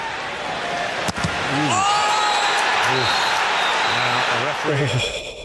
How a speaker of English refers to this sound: I'm just going to play the footage of it here, and you can hear the scream from the Arsenal man.